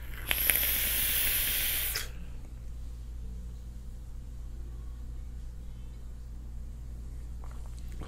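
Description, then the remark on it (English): A loud two-second hiss of vapor from a Petri atomizer with a drip tip, vaping Poorhouse Butterbean e-liquid, like a sharp draw or exhale, then a quiet hum with faint low rumble for the rest. “Oh, this is what I'm vaping tonight.”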